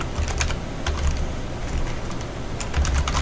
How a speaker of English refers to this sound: What's next is the thing where I stop typing so I can start talking.